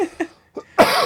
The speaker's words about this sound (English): I'm fighting like a coughing fit right now.